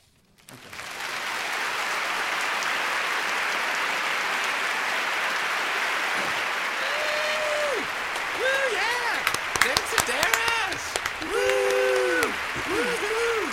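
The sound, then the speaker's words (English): Sustained, dense applause from a show audience after a story by David Sedaris, a steady wash of clapping that lasts throughout, with brief tonal sounds and sharp accents appearing over it toward the end. “I wish everything I did had that much applause.”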